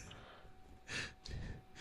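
A single muffled sneeze: a quick intake of breath, then a short, hissing burst of air and a softer breathy exhale afterward. Fairly quiet, with no talking.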